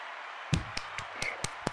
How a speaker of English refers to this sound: Give that another clap real quick.